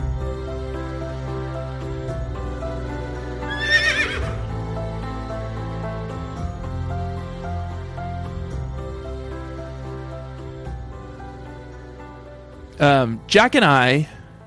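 A horse whinnies briefly, then near the end lets out a louder, longer neigh with a shaky, wavering pitch, both set against a steady backdrop of sustained musical tones.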